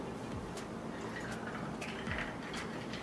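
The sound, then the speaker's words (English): Water pours steadily into a glass or cup holding a drink, a continuous splashing trickle with a few brief drips and gurgles standing out over the flow. “That's enough. We don't need too much water. We don't need to dilute it.”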